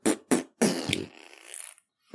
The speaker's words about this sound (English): Farting with the dude. Let's go. Best fart on the radio.